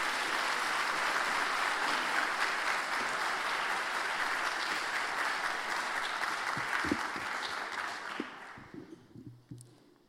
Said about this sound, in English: Let's clap our hands for her as she comes.